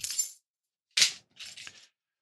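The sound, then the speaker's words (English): Keys jingle as they are handed over, in three short metallic bursts: a light rattle, a sharper clink, then a softer shake, all quiet and with no one talking. “Are the keys over there?”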